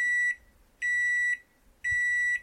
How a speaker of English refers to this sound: Is that a second microwave? Yeah, so when I'm done with the one, I really like Hot Pockets.